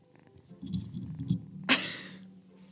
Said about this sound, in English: No, do not destroy the microphone. Yep, that's a kitten.